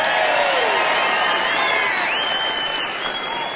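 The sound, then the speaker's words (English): An audience votes by applause, bursting into loud, sustained applause mixed with cheering and a few high whoops, a dense steady clatter of clapping that holds for several seconds. “So if you want the whole talk on helium, the way you vote is with your applause.”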